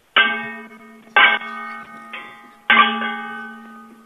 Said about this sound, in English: Like, do you know Twinkle Twinkle Little Star? Like sing that and like bang the pans to the beat of the music.